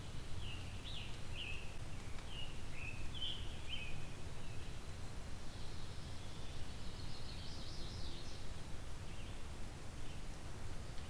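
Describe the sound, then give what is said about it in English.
A blue-winged warbler sings faintly, a series of thin high notes followed by a drawn-out buzzy phrase, over a steady low outdoor rumble. “There we go, blue-wing warbler.”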